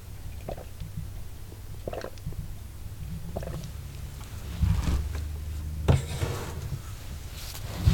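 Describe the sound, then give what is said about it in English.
Someone sips water: a few soft, wet mouth clicks and gulps, then a brief clatter toward the end, all over a steady low hum. No one speaks. “And I'll take a sip of water at this point.”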